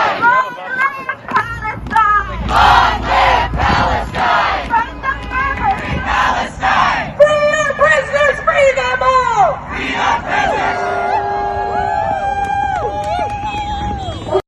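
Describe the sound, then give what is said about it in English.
A large crowd of anti-Israel protesters blocking traffic in New York City yells and screams loudly and continuously, many voices overlapping in strained, high-pitched shouts that rise and fall in chaotic waves throughout. “Rather than yelling and screaming, point out the region on a map.”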